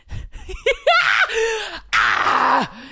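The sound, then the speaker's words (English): A person lets out loud, drawn-out screams of disbelief, a few short yelps leading into two long, strained cries with wavering pitch. “Sorry, I'm trying like not to scream so much into this because I've watched a few of my podcasts back and it's annoying when I scream.”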